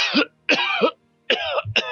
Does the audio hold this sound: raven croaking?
no